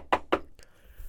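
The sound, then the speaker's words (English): Two firm knocks on a wooden door in quick succession, followed by a much fainter third tap, in otherwise quiet surroundings; a man knocking at the door where Rab Shimshon Wertheimer was, in Vienna, Austria. “And he came in to speak to him, and he knocked on the door.”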